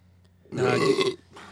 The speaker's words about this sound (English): that's how you burp.